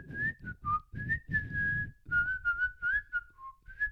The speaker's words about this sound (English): I would whistle a song.